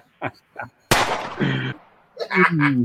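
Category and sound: sound effect, gunshots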